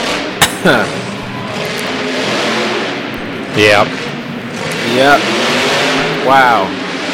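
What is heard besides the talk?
monster truck engines revving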